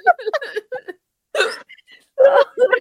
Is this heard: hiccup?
yes